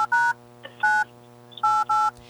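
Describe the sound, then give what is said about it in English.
Four electronic beeps from a telephone keypad as a phone call is dialed, spaced unevenly with the last two pressed in quick succession, clear over a faint steady hum, no voices. “Well, let's give her a phone call.”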